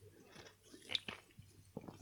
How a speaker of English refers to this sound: Let me have a sip of my drink. I really need a sip.